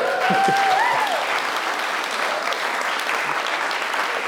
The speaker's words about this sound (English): Amen? Amen. Well, give us a clap then.